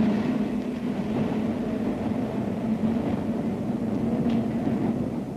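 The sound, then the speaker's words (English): A steady, loud rumble of an elevated train running along the tracks from the Battery uptown in New York City, with continuous low mechanical roar and faint clatter throughout, unbroken, no voices. “Ride the elevated train all the way from the Battery far uptown.”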